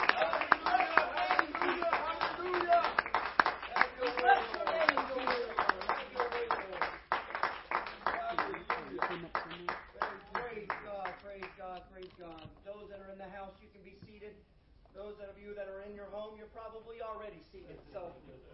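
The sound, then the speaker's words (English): A crowd claps hands to the Lord in a steady rhythm, loud at first, while voices ring out over it; the clapping thins and fades, leaving the voices continuing alone. “Why don't we just continue to clap our hands to the Lord right now?”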